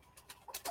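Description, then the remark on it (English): A chicken in a kitchen clucks softly in a quick run of short, clipped notes, about four or five in under a second, faint, with no voices. “There's a chicken in the kitchen.”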